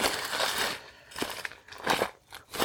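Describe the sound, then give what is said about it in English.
Footsteps crunch through dry fallen leaves littering the forest floor at Doi Kam in Doi Suthep National Park, Thailand, at the end of the winter season in the dry season, in a loose, uneven rhythm: several rustling, crackling bursts with a brittle, crisp texture. There is no talking. “And as you can hear, the ground is quite littered with leaves this time of year.”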